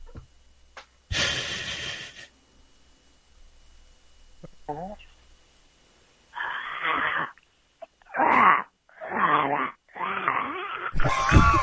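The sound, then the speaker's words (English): A voice imitates a zombie: a harsh breathy rasp, a pause, then a run of loud, guttural, wordless groans and moans in short bursts, each wavering in pitch. “That's what I call this little zombie voice I do.”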